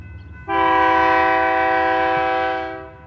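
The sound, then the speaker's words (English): A passenger train in California, ridden from Emeryville near Oakland toward Colonel Allensworth State Park: a loud, sustained horn blares for about two seconds over a steady low rumble of rolling rail cars, then fades as the rumble continues. “is the first person I meet on the train.”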